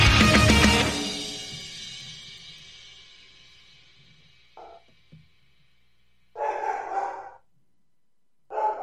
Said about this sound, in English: At least he waited till the end of the show to start barking. He parked at some opportune times, like he was agreeing with what we were saying.